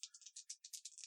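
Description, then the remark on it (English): Dice from an online dice roller, six pairs rolled, rattle and clatter in a quick series of sharp, bright clicks, about a dozen small impacts in a brisk uneven rhythm, fairly quiet, with no voices. “Oh, that was a good rolly dice sound.”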